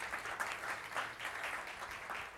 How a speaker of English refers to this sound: And he is back this morning, praise God, with his whole family. You can clap for Pastor Abdi, yeah.